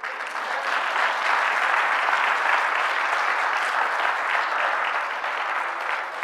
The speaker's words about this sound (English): I want a better hand clap than that.